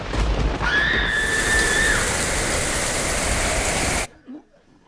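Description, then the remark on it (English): A brief thunderstorm made above a kitchen sink: a burst of loud, dense rain hiss with low stormy rumble, a thin high whine rising through it early on, ending abruptly after about four seconds into near silence. “What was that? Thunderstorm. Couldn't make it last more than a second, though.”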